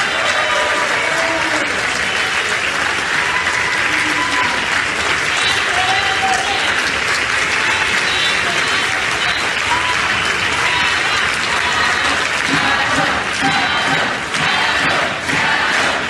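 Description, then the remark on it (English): A large crowd applauds and cheers steadily for Adam Schiff as he walks onto the floor, a dense, loud wash of clapping with scattered shouts and whoops rising above it. “They're cheering him.”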